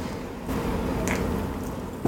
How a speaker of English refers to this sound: So, whoa, those bubbles are bubbly.